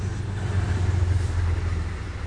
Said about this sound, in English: Oh, shit. That was the Amtrak. So that's what I was talking about last week. That was hauling through like hella fast. Okay, so that one's gone.